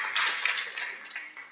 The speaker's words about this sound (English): And we hear the amen. That's worth the clap. Hallelujah.